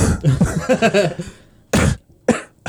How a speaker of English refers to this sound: Oh god. Sorry, I just coughed into the microphone.